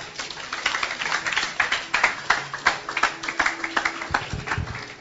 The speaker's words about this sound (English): Can you clap for Jesus?